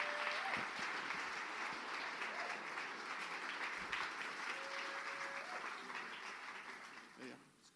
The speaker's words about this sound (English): Why don't you give them a round of applause to come and sit up here on these...